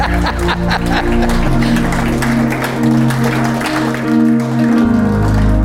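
An audience at a morning service claps loudly and steadily, dense hand claps blending over sustained, low organ-like chords that hold throughout the few seconds.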